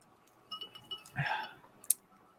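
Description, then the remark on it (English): Glasses clink together in a toast, a light ringing touch followed by a louder rustle and one sharp, bright chink near the end. Fairly quiet, with no talking. “Let's taste this. Drink to him. Cheers.”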